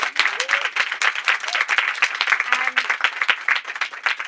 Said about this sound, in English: And third and finally, as always, I have to do the most important thing in life is a bit of gratitude. So a huge round of applause to our amazing panel.